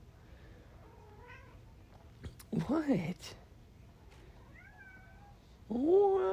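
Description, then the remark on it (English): A cat meows twice, loud and drawn-out, with a quieter mew earlier. A person says a short word between the calls. “My cat likes photosynthesis.”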